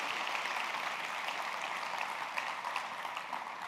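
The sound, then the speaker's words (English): A crowd of women claps steadily for a group of men, a dense wash of many hands applauding with no pauses, sustained and fairly loud throughout the few seconds, with no voices standing out. “Ladies, let's give a round of applause for all these men.”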